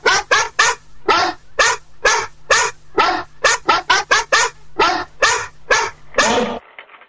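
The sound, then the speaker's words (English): A pit bull barks repeatedly in quick, loud bursts, about twenty sharp barks in an uneven rhythm, ending in a longer drawn-out bark before falling silent. “Mr. French is dragging in the mail now for our postal pit bull.”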